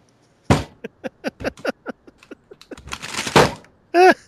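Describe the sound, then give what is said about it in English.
A sharp desk slam, then a quick run of small clattering knocks as an object is knocked over and rattles, followed by a rustling scrape and a brief voice at the end. “I knocked over a thing with that desk slam.”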